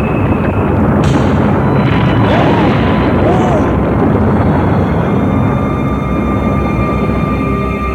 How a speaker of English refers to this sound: they cut the ribbon, and then they start having these earthquake-like tremors around the building. And then everybody kind of moves away from the front steps there, and the whole building just implodes. It collapses right in front of the crowd.